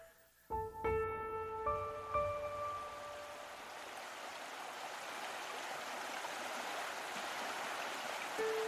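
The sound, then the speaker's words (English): Steady, full roar of rushing flooded river water fills the whole recording, dense. A few ringing musical tones sound briefly at the start, then the water continues alone. “We see the river. The waters are flooded over, rushing quickly past you”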